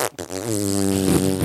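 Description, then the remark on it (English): A single long, loud fart rips, a steady buzzy rasp stretching past a second after a brief sputtering start, with no talking over it. “Big fart jam and fart plaza.”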